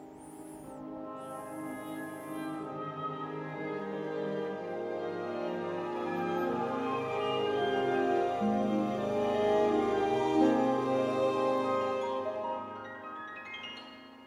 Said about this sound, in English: So this is the sound of my alarm clock, actually, in the morning.